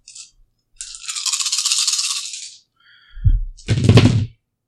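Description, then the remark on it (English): Dice rattle steadily for a couple of seconds, as if shaken in a cup, then tumble onto a hard surface with a short clatter and thud. No talking. “Before you open it, I'd like you to roll the dice.”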